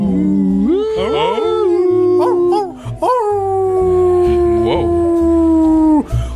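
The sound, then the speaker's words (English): A dog howls in long, sustained wavering notes, its pitch sliding up and then holding steady, with a second howl rising after a brief break; loud, over a low background drone. “Are there dogs there too?”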